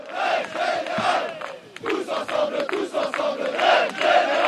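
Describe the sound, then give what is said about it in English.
A large street protest crowd in Paris, France, during strikes against the government raising the retirement age from 62 to 64, chants and shouts together, voices rising in loud rhythmic bursts with short dips between them, sustained and dense throughout. “She describes the scene and the smells as the strikes there show no signs of retiring themselves.”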